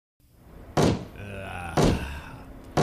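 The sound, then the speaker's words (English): A head bangs on a table during a stockholders' meeting in three heavy, evenly spaced thuds about a second apart, loud, with a low voice droning faintly between the blows. “stop banging your head on the table.”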